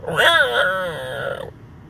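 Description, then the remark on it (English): A single loud, harsh fox alarm call lasting over a second, a raspy scream with a wavering pitch that drops off abruptly, leaving faint background noise. “It's called the alarm sound that the foxes make.”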